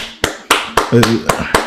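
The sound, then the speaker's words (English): Six sharp hand claps land in a steady, even rhythm, about four per second, with a brief voiced sound slipping in around the middle of the sequence. “Let me give you the clap.”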